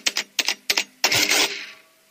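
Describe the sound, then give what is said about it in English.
Three quick mechanical clacking bursts, then a longer whirring, rattling print run that fades out, a small printing calculator printing an error on receipt paper that is almost used up, fairly loud with no talking. “Okay, that's an error because I'm out of receipt paper almost.”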